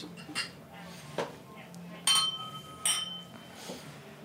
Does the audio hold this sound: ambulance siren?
no